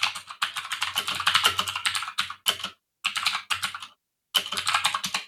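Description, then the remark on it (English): Rapid typing on a computer keyboard while searching on Google, a dense clatter of crisp key clicks in bursts separated by short silent pauses, with no talking. “Oh boy, you do not want to Google what I just Googled.”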